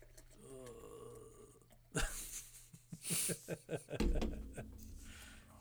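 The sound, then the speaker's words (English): Thin Mint beer is poured into glasses: a sudden splash, then a quick series of glugging bursts settling into a steady, hissing stream. A voice murmurs briefly beforehand. “Just pissing on our glasses here.”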